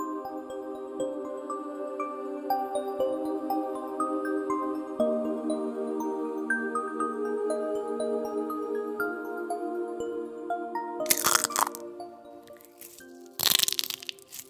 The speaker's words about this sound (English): I burst out of my egg, shattering the shell, and slither into the big, cold world.